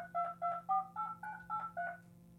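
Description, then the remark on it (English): A quick run of about eight telephone keypad tones as a phone call is dialed, each a short dual-pitched beep in steady rhythm, clear with a faint low hum underneath. “Let's see if we can just call the writers. All right, cool. Let's dial them on up.”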